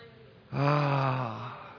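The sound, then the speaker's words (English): A single deep, audible breath in, fairly loud, with a throaty voiced edge, lasting under a second and then trailing off. No one speaks. “Let's just take a deep breath right now. Let's breathe in.”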